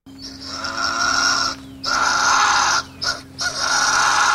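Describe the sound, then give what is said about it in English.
A fisher's loud, harsh scream, a raw, shrill wail repeated in four bursts, two long and two shorter with brief breaks between them. The fisher, sometimes called a fisher cat, is a weasel-like animal. Nobody speaks. “they often will attribute that scream to being actually a fisher cat”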